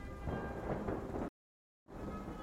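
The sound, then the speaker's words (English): Loud, rolling thunder from lightning striking a castle, crackling its bricks, rumbles over a rain-like hiss, cuts out abruptly into a brief silence, then resumes just as heavily. No voices are present. “the lightning that has been creeping in this whole time begins striking against Castle Praetor, singeing and crackling bricks.”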